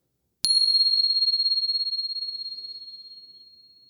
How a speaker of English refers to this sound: So once again, settling in. And here comes the bell.